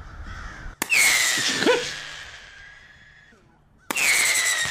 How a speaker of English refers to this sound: folks from the city of Rochester are out using lasers and pyrotechnics, spotlights to try and disperse the crows